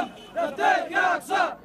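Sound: protest crowd shouting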